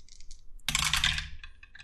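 Two dice clatter across a hard table, a short burst of rattling clicks and taps that spreads out, then settles into a few lighter, scattered ticks as they come to rest, landing on a 6 and a 5.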